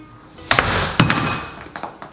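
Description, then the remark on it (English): A tin of beans set up high tips over when a door is shut and empties into a bowl below: two sharp clanking knocks half a second apart, a sloppy rush of contents between them, then a couple of lighter taps. “My plan is to put this tin of beans up on here. And then when I shut the door, it should pour into this bowl down there.”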